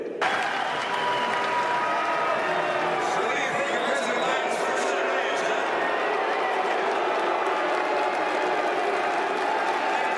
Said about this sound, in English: Here at the Utah Republican Party State Convention, Senator Mitt Romney was loudly booed by delegates.